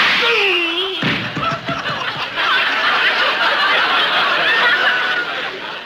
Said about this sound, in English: Do you know what it means when someone slaps your face with his glove? It means a challenge to a duel. That's right, so take that.